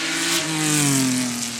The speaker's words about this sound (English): That's a Ford Capri. Would you believe it?